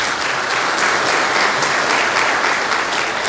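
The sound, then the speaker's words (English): A crowd claps steadily to thank those who did an exhortation, played the piano and sang, a dense wash of many hands applauding at a constant loudness throughout, with no voices standing out above it. “They didn't do it for our applause.”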